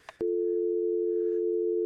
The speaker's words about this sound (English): Have you checked you've got a dial tone? Let me just... Is it purring?